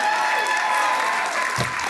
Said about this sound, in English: Come, everyone, clap your hands. Shout to God with a joyful praise. Let's read that again so you kind of get it. Come, everyone, clap your hands with joyful praise.